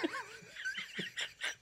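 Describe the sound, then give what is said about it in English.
A human voice imitates a dog barking, giving three or four short, sharp bark-like yelps in quick succession after a brief warbling vocal sound, moderately loud. “Air Bud just barking, talking shit. Woof, woof, woof.”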